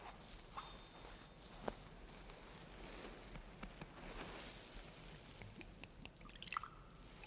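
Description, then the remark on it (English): A small amount of water is poured into wine in a chalice, heard as a faint trickle with a few soft drips over a low hum; no one speaks. “By the mingling of this water and wine, become partakers of his divinity, we became partaker of our humanity.”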